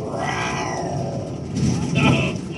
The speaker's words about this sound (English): But immediately after she said that, was a growl. Couldn't hear it with a naked ear when we were recording, but when we were playing it back, it's like, oh, that's funny,